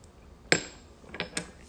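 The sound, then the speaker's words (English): A sharp, bright clink of shot glasses tapped together in a toast, ringing briefly, followed by a few softer knocks and taps, like glasses set down on a table. “Take your shot really quick. Okay, cheers.”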